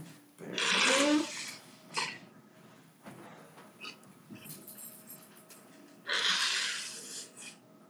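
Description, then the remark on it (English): A dog snorts and huffs in three loud, rough bursts, a long one at the start, a brief one after, and another long one near the end, with quieter breathing between. “What's wrong with this dog, man?”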